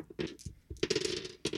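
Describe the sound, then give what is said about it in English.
Dice rolled for an attack to hit clatter and tumble across a hard tabletop in a quick burst of sharp, rattling clicks, fairly loud, settling after a second or so with no voices. “Fuck you, dice.”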